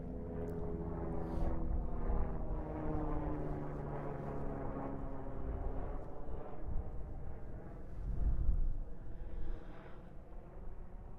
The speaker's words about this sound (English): Sorry, airplane above head. Hold on.